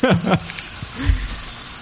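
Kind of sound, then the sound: insect, crickets chirping sound effect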